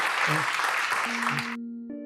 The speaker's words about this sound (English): Thank you. Big round of applause.